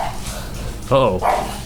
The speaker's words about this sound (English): Now my dog's joining in the fun. Uh-oh. What is your problem? Oh, dogs and recording. Always so good.